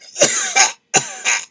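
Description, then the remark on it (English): Someone clears their throat twice in quick succession because something was stuck in it: two harsh, raspy bursts, each with a sharp start and a rough rumble, loud, with no talking around them. “Had to clear my throat, too.”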